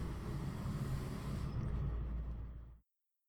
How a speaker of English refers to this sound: Oh, I'm a big truck. Thanks a lot.